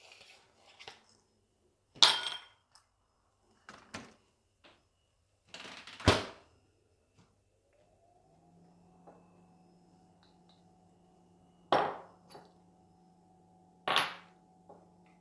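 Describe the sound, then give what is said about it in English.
Several sharp glassy clinks and knocks, fairly loud, spaced irregularly as a whiskey glass is handled and set down, with a low steady hum rising in the background partway through. “That is whiskey glass.”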